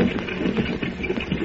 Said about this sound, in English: Horses are following us. Can you see who it is, Pancho? Chico, it's Lobo and Diablo. They follow Chico and Pancho.